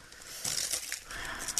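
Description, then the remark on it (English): Wrapping paper is torn off a gift package, ripping and crinkling in a few quick, scratchy bursts, with the tearing getting louder toward the end and no talking over it. “Paper's coming off. Standard brown box underneath.”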